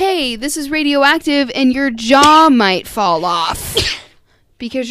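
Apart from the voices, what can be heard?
sneeze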